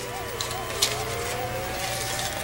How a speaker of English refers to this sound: That fire truck was for me. My studio's on fire.